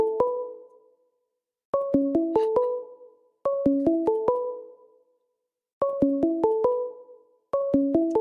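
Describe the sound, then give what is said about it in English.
A phone ringtone for an incoming call plays a repeating melodic chime pattern, bursts of quick bright notes separated by short pauses, loud with no talking. “It's ringing, but I can't see who's calling, and I have no button to answer the phone.”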